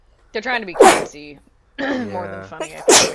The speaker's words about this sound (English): Bless you.